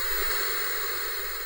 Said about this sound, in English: Tonight, I cannot focus on anything in front of me, and I flip through channel after channel before landing on static. It makes an unpleasant noise, but it is loud enough to fill up my sphere of awareness and crowd out anything else.